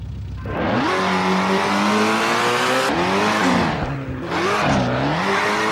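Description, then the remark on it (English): A car engine in a racing game revs hard and accelerates around a course of cones, pitch rising and dipping through gear changes as tires squeal while the car slides to make a tighter circle, loud throughout. “Here you will begin to learn to slide the car to gain a tighter circle.”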